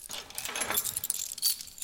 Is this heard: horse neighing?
no